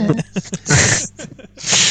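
Close, audible breathing: two long, airy breaths, loud and near the microphone, separated by a few short, faint vocal sounds.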